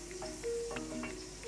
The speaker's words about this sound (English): So now you can hear that onion sizzling, and we'll just let that sizzle for 2 minutes,